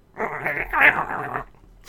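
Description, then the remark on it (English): A voice imitates a badger growl, a single rough, rumbling snarl lasting over a second, fairly loud, with no other sounds around it. “God, I hope that's the noise they make. It's going to be close, right? I figure they growl.”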